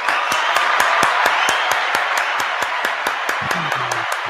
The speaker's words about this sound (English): Okay. I'm going to give you applause now. Good comeback.